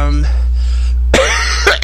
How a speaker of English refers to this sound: Okay, I am coughing a little bit. I apologize for that.